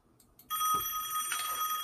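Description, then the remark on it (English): A telephone bell suddenly starts ringing, a loud, bright, continuous metallic jangle that keeps going to the end of the short clip with no one talking. “Pick up the phone.”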